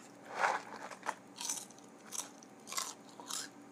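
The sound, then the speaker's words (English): Crisp crunching of someone chewing Cracker Jack caramel popcorn, with about six distinct bites spaced roughly evenly over a few seconds, no talking. “Crackety Jack, don't crunch back.”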